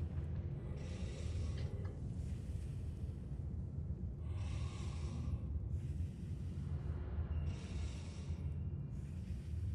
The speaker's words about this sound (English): As she comes out here, she can hear that kind of hissing or that breathing of creatures some distance off. You can hear it. You can hear it on the in the background there.